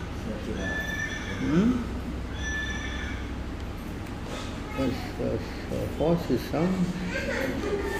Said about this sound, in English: Some horse. Is that somebody is a horse?